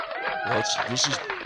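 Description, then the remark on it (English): A canned applause effect played from a sound-effect button: a dense, steady wash of crowd clapping with cheering and whooping voices rising over it, loud throughout the short burst. “I have two applause.”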